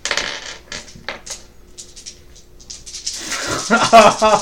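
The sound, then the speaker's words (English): A burst of many dice clattering and rattling across a hard surface, with sharp scattered clicks that build into a dense, louder rattle toward the end. “Just shit ton of dice being rolled.”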